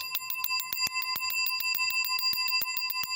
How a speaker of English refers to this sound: invented a doorbell which runs on batteries and saves people the trouble of knocking at his door when they need him.